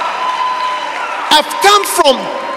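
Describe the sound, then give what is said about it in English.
Church members break into several loud, rising shouts and cheers over a steady droning background, with only a faint hint of clapping mixed in. “Those are my members shouting.”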